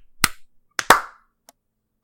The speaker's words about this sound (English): I was clapping on on four. Everybody clap once right now.